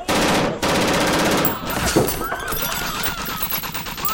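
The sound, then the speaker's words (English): Rapid, sustained gunfire crackles loudly in dense bursts, like automatic weapons fire, then thins into scattered shots under chaotic shouting and commotion. “Quit throwing lead!”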